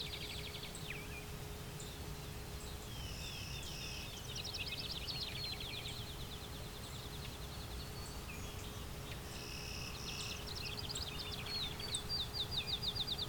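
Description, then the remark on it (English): High, thin calls of cedar waxwings that have just landed nearby sound in two bursts of rapid trilled notes over steady outdoor background noise, with other faint bird chirps scattered through the scene and no talking. “Cedar wax wings just land nearby.”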